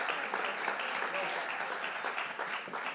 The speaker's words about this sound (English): Please applaud the Father and the Son and the Holy Spirit. Thank you, gentlemen. Great job.